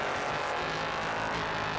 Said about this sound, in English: So out of the pit lane comes the number three car as well.